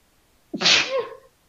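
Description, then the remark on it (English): A single loud sneeze bursts out suddenly with a sharp intake and hissing blast, then trails off quickly into quiet. “Bless you.”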